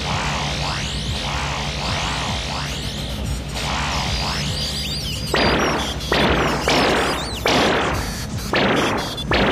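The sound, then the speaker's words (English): A sci-fi electromagnetic pulse cannon fires repeatedly at security bots: a run of sweeping electronic zaps gives way to a steady series of loud, crackling blasts about once every second, forceful, with no talking. “I have the electromagnetic pulse cannon charged.”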